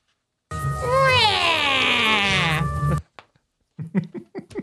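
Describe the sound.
A person imitates a bird call with one long, loud, warbling cry whose pitch wavers and slides downward, followed after a pause by brief bursts of voices.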